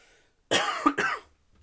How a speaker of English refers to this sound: Here comes a big cough.